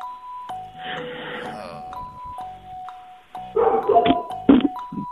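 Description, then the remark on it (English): A two-tone doorbell chime rings over and over, then dogs break into a loud flurry of barks near the end, overlapping the continuing chimes. “Dogs want to answer.”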